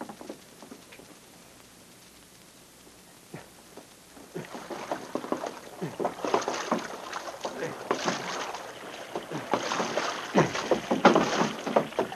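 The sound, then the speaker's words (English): Water sloshes and splashes in rhythmic strokes as a canoe paddle dips through the water, starting quietly and growing busier and louder after a few seconds. “Trainer said he was taking a canoe. So will we.”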